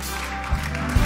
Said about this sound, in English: So it's funny as the women clap and the guys are like, So what you're saying is I have to clap? Yeah, because you'll do it for Tom Brady.